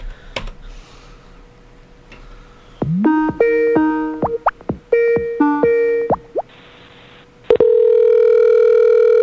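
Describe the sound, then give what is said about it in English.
A telephone line hums with a dial tone, then short bursts of keypad beeps and clicks as a number is dialed, ending in a loud, steady ringing tone. No one speaks. “Pick up the phone, man.”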